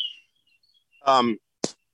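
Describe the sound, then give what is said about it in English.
A car alarm gives a short, buzzy electronic chirp followed by a quick sharp blip, preceded by faint high-pitched tones; there is no talking. “There's a car alarm going. I thought it was another bird.”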